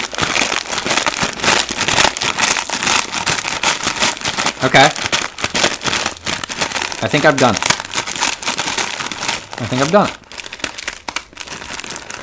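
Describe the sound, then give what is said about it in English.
Dense, continuous crunching and crinkling as dry instant ramen noodles are crushed by hand inside their plastic bag, with a brief spoken voice breaking in now and then. “I don't think I could smash a regular bag of ramen like I am with this, because this is smashing pretty easily with me just kind of like crunching it with my hand.”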